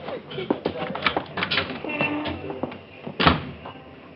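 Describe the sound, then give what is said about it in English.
A door is handled: a latch clicks and wood thumps as it swings open and shut, with scattered knocks and shuffling around it and a sharper bang near the end. “Out the door.”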